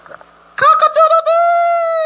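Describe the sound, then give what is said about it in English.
A voice imitates a rooster crowing: a loud, single cock-a-doodle-doo with choppy opening notes rising into a long, drawn-out final tone, after a brief murmur of quiet sound. “Cock-a-doodle-doo! Cock-a-doodle-doo! Cock-a-doodle-doo!”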